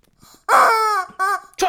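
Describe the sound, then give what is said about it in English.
A chicken called Troy Chicken squawks three times in loud, strained bursts: one long drawn-out cry, then two shorter clipped calls after brief pauses, with no talking over them. “I can't take this chicken with me anywhere, folks.”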